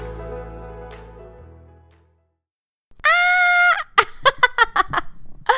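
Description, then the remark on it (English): A person lets out a loud, sustained high-pitched shriek, followed by a rapid string of shrill yelping bursts, after a fading musical tone and a brief silence. “Oh boy, I'm starting my first podcast with the sound of a shrieking crazy person.”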